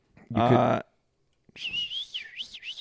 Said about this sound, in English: No, not the whistles again. He did it on purpose. He's trying to kill time.